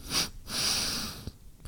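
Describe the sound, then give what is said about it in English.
A person sniffs a shot of an alcoholic beverage: a quick short sniff followed by a longer, drawn-out inhale through the nose, then a faint breathy tail. No one speaks. “Give it a little sniffy sniff.”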